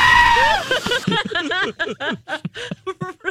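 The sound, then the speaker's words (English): A voice lets out a loud, wavering bleat-like scream in imitation of a mountain goat, followed right away by a run of short, rhythmic bursts of laughter. “No, nobody ever screams from the mountaintop unless you're a mountain goat.”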